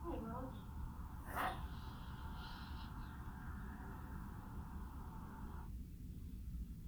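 A dog named Rolf snorts and pants, with one sharp snort early on, over steady background noise and a constant hum that cuts off near the end.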